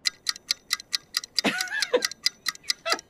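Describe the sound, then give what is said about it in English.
A countdown timer set to 60 seconds ticks rapidly and evenly, about four crisp ticks per second, clear, with a brief voice sounding over it midway. “60 seconds on the clock. Are you ready? Begin.”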